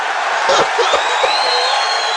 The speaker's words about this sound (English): Listen to that goddamn crowd, and that is mostly men cheering, if you can't tell.